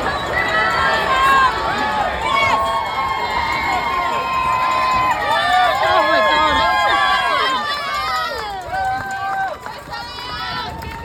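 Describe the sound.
A loud, dense marathon crowd on Tower Bridge, London, screams and cheers continuously, many voices overlapping in high shouts and whoops, with footsteps of a runner crossing the bridge passing through the noise.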